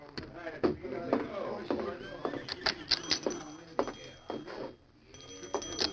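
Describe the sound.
Horses shift and stamp with irregular hoof clip-clops, broken by a thin, high whinny or two, over a busy, rustling background with murmuring voices, at a stagecoach stop where the horses are being changed.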